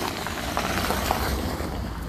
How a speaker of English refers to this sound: So you can hear cars and stuff.